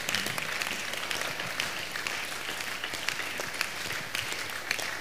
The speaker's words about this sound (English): Clap for the pastor.